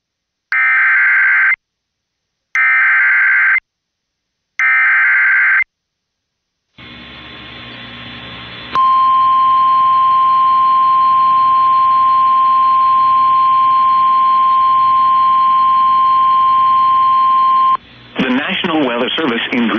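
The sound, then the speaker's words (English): An emergency weather alert broadcast for a severe thunderstorm warning in southeastern Mecklenburg County and Union County, North Carolina: three short, harsh bursts of data noise, a brief hiss, then a loud, steady, piercing attention tone holding for about nine seconds before a voice begins speaking. “Mecklenburg has issued a severe thunderstorm warning for southeastern Mecklenburg County in the Piedmont of North Carolina, Union County in the Piedmont of North Carolina, until 2:45 p.m.”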